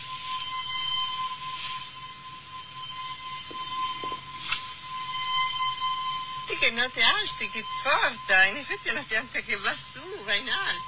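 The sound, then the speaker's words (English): A recording of sounds from flowers in a garden: sustained high electronic tones ring over a steady hum, then a cluster of brighter, wavering chime-like notes rises and falls in quick succession, fairly loud. “Wow, they sound like wind chimes.”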